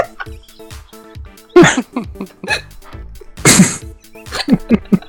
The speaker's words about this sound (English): Farted a big stinky wet fart. Can you smell it?